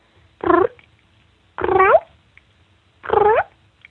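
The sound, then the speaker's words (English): A voice imitates a mother cat's soft cooing chirp to kittens, three short rising trills spaced about a second apart, clear with nothing else around them. “And everybody out there, practice your little cooing sound and see if you can get that.”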